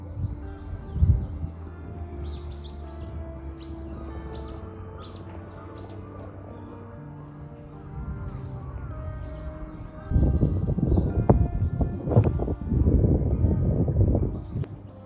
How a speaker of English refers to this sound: So I hear a lot of creepy noise already. A lot of crows, some distant moaning, groaning.